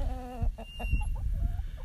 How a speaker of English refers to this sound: That's the sounds of our chickens that are looking at me, wondering, what you doing? What you got in your hand? Is there any food?